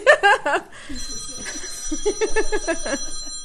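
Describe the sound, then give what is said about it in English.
A telephone rings with rapid, trilling electronic pulses, fairly loud, in a couple of bursts over a low background murmur. “And their phones go off in the middle of, you know, it's all normal shit.”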